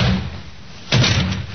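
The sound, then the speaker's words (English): A door is forced open with a single heavy crash partway through, followed by a brief rattling rumble as it gives way. “He's in there. Take care of the door, Sergeant.”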